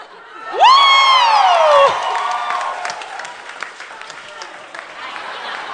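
A crowd at an author's reading event breaks into applause and cheering to thank the readers, opening with a loud, high whoop that slides downward in pitch, followed by several seconds of steady, crackling clapping mixed with scattered shouts.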